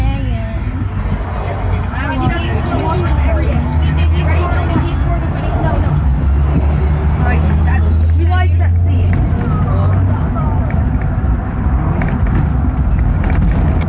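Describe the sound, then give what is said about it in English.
A steady low engine drone fills a bus interior while several people chatter in the background, the murmur of voices continuous and moderately loud over the rumble. “The bus says it's a Friday, so the bus isn't very active.”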